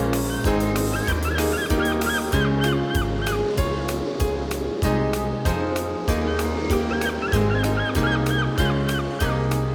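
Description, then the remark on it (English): Seagulls call repeatedly in quick, honking cries by the ocean over a continuous low rumble that may be surf, loud throughout with no one speaking. “and what about the seagulls by the ocean's gentle tide?”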